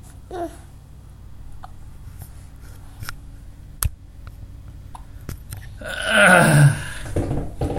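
hiccups

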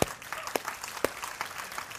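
audience clapping

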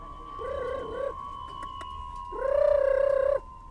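pigeons cooing

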